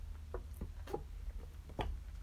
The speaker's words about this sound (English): That being said, let me take a sip.